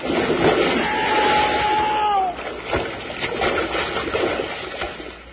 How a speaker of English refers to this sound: Get a good grip on the chain so you won't get thrown off. These big logs will slide right out on that lake like a canoe on a mill pond. I hope you're right. I'm all set. So am I. Here we are. We'll hit with a big splash, so hold on tight.